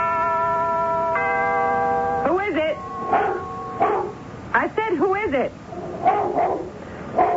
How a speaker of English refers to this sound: Have you got a dog with you?